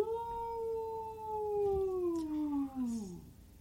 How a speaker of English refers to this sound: You hear one loud howl.